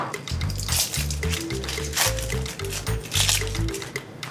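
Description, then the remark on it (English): Wet peeling of a vegetable's skin as the first step of an experiment: a steady run of squelchy, tearing rasps with short slippery bursts, over a low, steady humming tone underneath. “first step is to take off the skin.”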